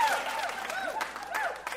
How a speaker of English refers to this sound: Major clappage.